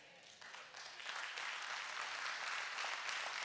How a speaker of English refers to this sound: Amen. That's your church family clapping for that.